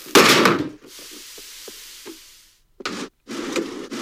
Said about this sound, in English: You know, I was watching this again this morning, and I have to give it to the Foley people. That did sound like a drawer exploding.